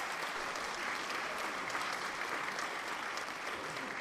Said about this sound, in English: Shouldn't the people not be applauding? They are applauding, yes.